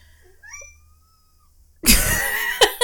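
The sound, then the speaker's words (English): A cat gives a few short, thin meows at moderate volume, then a sudden loud, harsh, noisy burst takes over for the last second, with no talking. “That was kind of cute. That was cute. Oh boy. He's such a dope. Scary kitty.”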